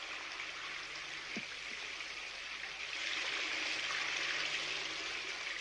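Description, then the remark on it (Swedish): All the water is tipped out over a whole floor, splashing across it in a steady, hissing rush that swells louder about halfway through, with no voices present. “Pippi välte ut allt vattnet över hela golvet.”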